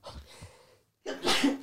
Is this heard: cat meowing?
no